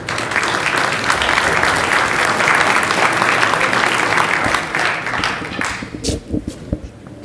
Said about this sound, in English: So, round of applause for IPC, 1, 2, 3.